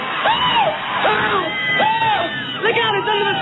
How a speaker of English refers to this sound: Ladies and gentlemen, the Tingler has been paralyzed by your screaming. There is no more danger.